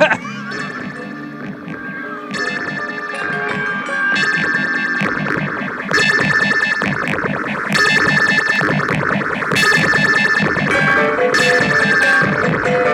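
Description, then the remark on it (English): A squelchy, distorted synth sound from a film score, heard when the dog first appears on screen, loud and layered, cycling through a repeating phrase about every two seconds with bright, buzzy bursts on top. No one speaks. “But when you also get that squelchy synth noise when we first see the dog, just for the nanny sound.”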